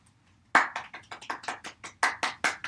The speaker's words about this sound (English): And of course, my biggest thank you goes to my mom, little round of applause for my mom.